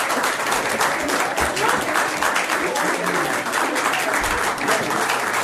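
Steady applause from a small crowd of people, a dense patter of many hands clapping continuously for several seconds at an even level.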